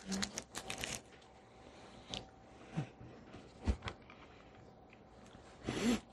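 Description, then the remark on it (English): Crinkly, crackling bursts of a cough drop wrapper being twisted open, loudest at the start and again at the end, with a few sharper clicks and rustles in between. “Excuse me, I'll take a cough drop.”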